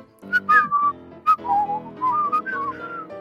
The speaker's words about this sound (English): And you can whistle. You can whistle.